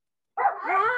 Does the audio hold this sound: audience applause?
no